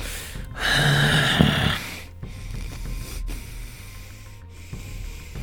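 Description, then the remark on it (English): A man breathes on a phone line: a heavy, rasping breath surges loudly for about a second, then trails off into quieter, slower breathing over a faint hiss. No one speaks. “After that, his silence is just on his end of the line here. But you hear breathing.”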